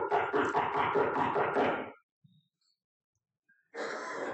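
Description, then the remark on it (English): Loud, rapid pounding on a door in a fast run of heavy blows lasting about two seconds, then a pause before another burst of insistent banging begins. “You knock forcefully on the door, insisting they answer.”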